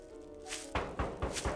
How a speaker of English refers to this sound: Maybe we should try knocking again.